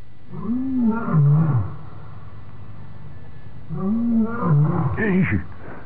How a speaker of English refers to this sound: By George, Marlin! Marlin, it's the same lion we've had last week. He's an addict. He's addicted to tranquilizers.